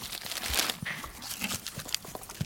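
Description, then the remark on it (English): Crinkling and crunching of paper as a goat chews a book, with irregular soft rustles and tearing sounds throughout as it steadily munches on the pages. “Okay, you're just chewing away there.”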